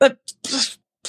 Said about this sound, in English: You're just over there laughing. No, I was coughing.